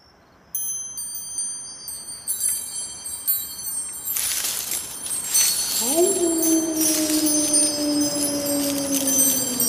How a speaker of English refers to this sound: Oh, listen to those wind chimes. That's Esther from Once Upon a Crime. She reminds us that not every story has a happy ending.